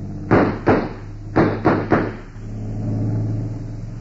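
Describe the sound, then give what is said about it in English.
A motorboat engine drones low and steady, swelling louder toward the end as it revs away, while five sharp, loud bangs punch through in two quick clusters early on. “We're pulling out of here. Stop that boat!”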